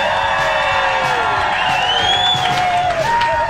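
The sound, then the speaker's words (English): A large crowd cheers and whoops loudly at the Minnesota State Fair on a Wednesday, a dense, sustained roar of many voices with high shouts rising above it. “Big Wednesday crowd.”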